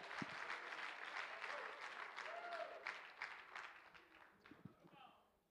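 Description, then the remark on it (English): A seated audience claps for the Lord, a dense wash of applause for several seconds, then the clapping thins and fades, leaving a few scattered claps and faint voices. “Would you give the Lord a hand clap tonight as you're seated?”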